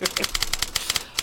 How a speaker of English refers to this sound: Maybe just edit in a typewriter noise. I will.